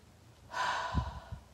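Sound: deep breathing demonstration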